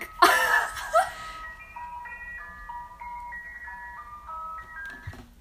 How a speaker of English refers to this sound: Yeah, that's scary. That sounds like an ice cream truck.